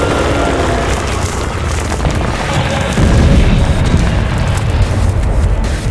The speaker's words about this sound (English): Look out! He slipped under the dragon, using those boulders to knock that thing into the canyon!